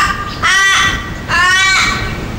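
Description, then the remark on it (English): Two loud, raspy crow caws, each about half a second long with a short pause between them, delivered by a human voice imitating Graham Kennedy's crow call, with no other talk. “Cue Graham Kennedy's crow call.”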